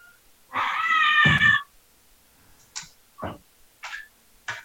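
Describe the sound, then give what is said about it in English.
A cat lets out one loud, drawn-out meow, then follows with four short, quieter mews spaced a beat apart, with no talking. “It thinks he's having some cat problems.”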